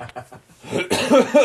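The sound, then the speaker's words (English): A loud cough bursts right into the microphone, followed by a couple of rough, voiced hacks that edge toward a chuckle, with faint murmuring just before. “I just coughed right into the mic, too.”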